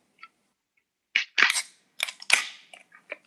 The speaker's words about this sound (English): Let's go ahead and crack our cans open and give it cheers.